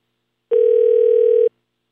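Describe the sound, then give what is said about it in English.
A single steady electronic telephone ring tone on the line, holding one even pitch for about a second before cutting off cleanly, heard alone with no voices. “So these two people with very different beliefs got on the phone together.”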